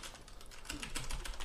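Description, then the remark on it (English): A rapid stream of clacky keystrokes on a mechanical keyboard, steady, with no voices. The typing stays soft but constant, with crisp individual key clicks running together. “I'm gonna invest in a non mechanical keyboard for this podcast specifically, because it's annoying. It's an annoying sound.”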